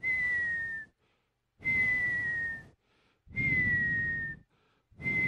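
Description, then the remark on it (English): A high, steady whistling tone, heard at around 3:30 to 4 in the morning while trying to sleep, that dips slightly in pitch, repeating in four evenly spaced bursts about a second long. Each burst is breathy and rough, with short silent pauses between. “And I'm like, what the hell is that whistling noise?”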